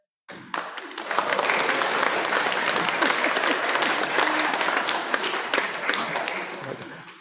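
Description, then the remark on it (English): A crowd bursts into sustained applause during a sermon, dense overlapping claps holding steady for about seven seconds before starting to taper. Faint voices may mingle underneath. “Oh my God, applause during a sermon.”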